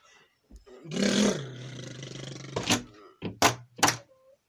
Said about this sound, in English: Good, right, the doors are open, let's get out.